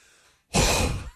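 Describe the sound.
A voice imitates an older woman's heavy panting with one loud, breathy exhale lasting about half a second after a short pause, with no words spoken.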